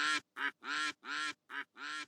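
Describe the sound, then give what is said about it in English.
Six loud, nasal duck quacks in quick, uneven succession, with no other sounds around them. “Now, when all the laughing and quacking stops, I'll get on with the story.”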